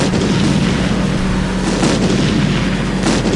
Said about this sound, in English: Batman prepares to open fire on the clown, but the Joker unleashes a series of large, colorful balls, which explode one by one. The Batmobile violently swerves, dodging the exploding balls.